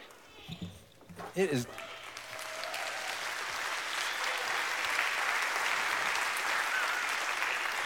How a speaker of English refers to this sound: It's good to see you all. Some of you are applauding. Some of you are saying, get on with it. Let's go.